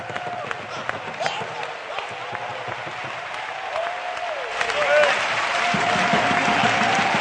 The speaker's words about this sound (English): Give the Lord a hand clap of praise and worship Him this evening.